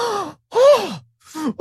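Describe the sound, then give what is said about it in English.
A voice imitates airline passengers gasping: three short, breathy vocal bursts with falling pitch, fairly loud, separated by brief silences, the last one cut off abruptly. “People just audibly gasping.”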